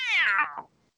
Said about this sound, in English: And she's still fucking screaming. Sound like a dang cat.